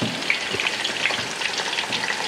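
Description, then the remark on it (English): Steady, dense crackling and sizzling of battered seafood and lemon slices deep frying in hot oil until the batter gets crispy, continuous, with tiny pops scattered throughout and no voices. “So basically what we're doing is we're just gonna cook this until the batter gets nice and crispy.”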